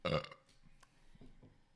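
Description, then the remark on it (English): A single loud burp bursts out at the start during a beer tasting, with a throaty, voiced rasp, then trails off into faint low rumbles and small mouth noises. “I need to burp at a different register.”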